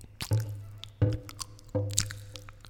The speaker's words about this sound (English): That is the sound of my cotton mouth.